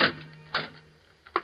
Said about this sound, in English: I went to my own door, and as casually as I could, I opened it.